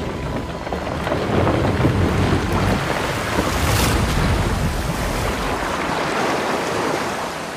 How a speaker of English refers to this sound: Creaking and rattling, the longship tilted and then gave itself to the rush of the swollen Thames.